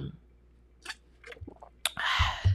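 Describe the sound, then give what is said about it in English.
Quiet sipping of tea from a cup: a few small mouth and cup clicks, then a longer airy slurp near the end, with no talking. “Let me sip my tea.”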